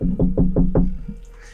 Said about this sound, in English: Walk into the library and knock a little.